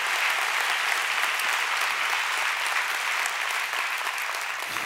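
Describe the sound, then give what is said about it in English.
A crowd applauds steadily for about five seconds, celebrating reaching 113 churches toward a goal of 1,000, a dense, even wash of clapping at a constant loud level, with no speech over it. “I think that's something probably worth celebrating and cheering for.”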